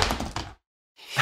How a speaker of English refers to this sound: He just cracked his screen with a die. Did he crack his screen?